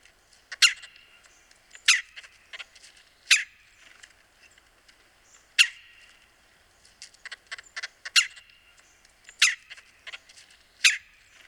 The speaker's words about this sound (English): And right, so this is a bird that you're going to hear in the city in your backyard. They're very urbanized. Yeah, they're everywhere. Mm-hmm. So here is a red-bellied woodpecker.